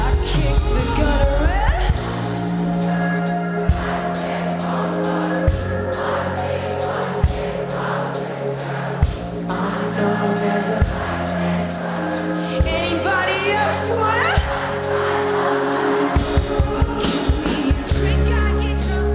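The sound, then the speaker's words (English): A festival crowd at Splendor in the Grass 2017 sings along and cheers over a loud live band, the mass of voices blending with steady bass and drums for the whole stretch. “And this was a moment from Splendor in the Grass of 2017, which I love because of the crowd”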